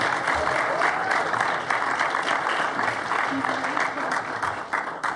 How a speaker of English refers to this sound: Come on, let's cheer on.